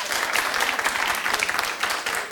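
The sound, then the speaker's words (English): An audience claps steadily, a dense, even patter of many hands with bright, crisp hits throughout and no voices standing out. “Clap if you've looked at Jennifer Lawrence's hacking pictures.”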